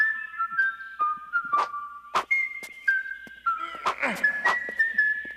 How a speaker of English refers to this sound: And shout out to Link, he's whistling the Super Mario Bros. Theme.